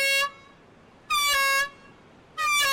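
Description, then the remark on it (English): A shark warning air horn on Cape Town's ocean beach in South Africa, sounded as a test, in loud, steady blasts, three in all with short gaps between, each a brassy, harmonic tone holding one pitch; no one speaks. In a real alarm it signals a great white shark swimming toward shore. “This is just a test, but about 50 times a year, this horn and an even louder siren signal an actual alarm.”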